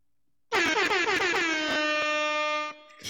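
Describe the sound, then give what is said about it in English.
A loud air horn blares in one sustained blast of about two seconds, its pitch wavering and sliding down at the start before holding steady, then cutting off abruptly. “that's an excellent timed air horn.”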